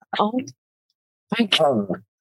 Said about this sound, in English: She's making her debut. Oh my gosh. Okay. If you know anything about cattle dogs, they're extremely chatty. Like that's how they thrive, is because they talk to the cattle and they're work dogs. And so they use their voices a lot.